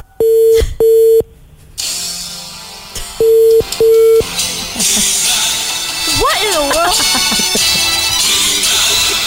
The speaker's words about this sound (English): That's his actual ringtone, by the way.